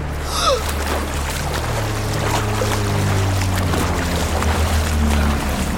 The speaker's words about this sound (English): Am I headed for the surface? Whoa! Waves. I hear waves.